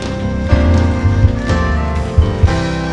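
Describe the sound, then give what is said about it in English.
An audience claps their hands to the Holy Spirit along with loud, sustained music, the many hands blending into a dense, rain-like patter with a few sharper accents poking through. “Well, let's clap our hands to the Holy Spirit.”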